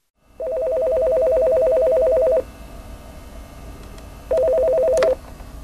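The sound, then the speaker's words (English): A telephone ringback tone purrs through the line in two long rings, the second cut short by a click as the call to the UC Davis veterinary school's Pet Loss Support Hotline is answered. No one speaks. “for people having trouble dealing with those emotions, help is just a phone call away.”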